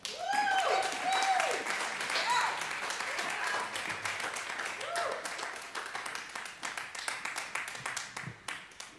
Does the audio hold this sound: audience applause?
yes